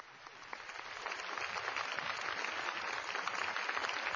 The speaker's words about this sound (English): Ladies and gentlemen, our keynote speaker, big round of applause to Latoya Gantrell.